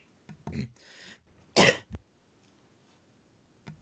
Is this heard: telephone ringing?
no